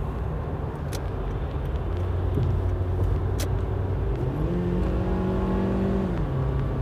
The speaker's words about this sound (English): There's a fucking dump truck somewhere around here that's fucking kicking up rocks.